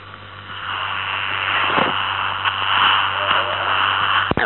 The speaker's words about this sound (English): It's got peculiar white noise on it. Oh, it's in the FM position.